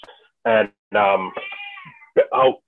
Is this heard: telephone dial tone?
no